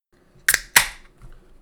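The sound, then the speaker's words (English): A can of American IPA beer is cracked open: two sharp, loud metallic snaps in quick succession, the second trailing off into a short hiss, with no voices. “Let's go ahead and crack her. All right, man. Let's crack her open.”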